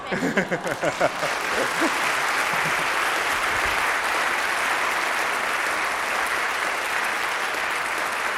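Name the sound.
audience applause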